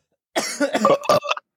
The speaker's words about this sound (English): My COVID cough is still around, so I apologize. I'm sorry.